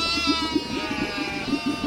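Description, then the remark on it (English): A sheep bleats in a long, wavering, tremulous cry that fills the whole moment, fairly loud, with no other sounds around it. “We catch up with the sheep refugees in an exclusive interview.”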